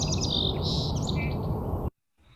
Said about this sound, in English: I love the song sparrows. For me, they're the sound of spring, not because they start early, but just they are very present. And look at that name, right? Song sparrow. They sound so melodious.